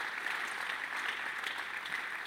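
A crowd applauds steadily, a dense wash of many hands clapping at once with no single claps standing out, holding an even moderate loudness throughout.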